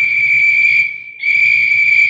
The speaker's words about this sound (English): Hear the whistles, Delaney? Artie, I heard them when you whistled, too.